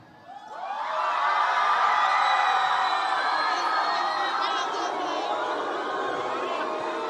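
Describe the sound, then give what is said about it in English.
A large crowd erupts into loud, sustained screaming and cheering for Group A, being judged by how loud they scream. The noise swells within a second and holds at full volume, a dense wall of high-pitched voices and whoops. “We're going to be judging by the screams, okay?”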